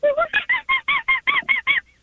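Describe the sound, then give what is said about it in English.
A voice imitates a nervous monkey with about ten quick, harsh, high-pitched chattering yelps in a rapid, even series, fairly loud, ending in a faint little squeak. “You're going to do a nervous monkey.”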